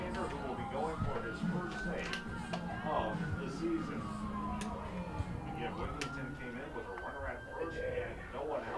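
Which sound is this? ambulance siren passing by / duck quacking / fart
ambulance siren passing by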